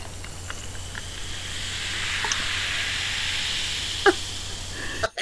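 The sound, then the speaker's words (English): A fizzy drink bubbles and fizzes for an ASMR recording, a steady soft hiss dotted with tiny crackling pops, with a brief louder crackle near the end and no talking. “Did you enjoy the bubbles?”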